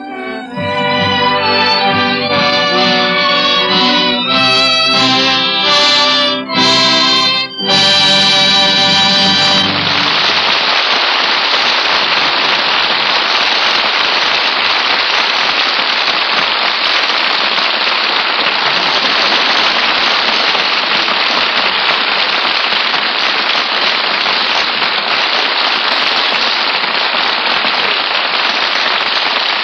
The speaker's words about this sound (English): I think I feel another storm coming on.